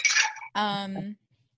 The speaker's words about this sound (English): I'm over here just making another little drink. Sorry. Oh. Apologies for any clinking ice.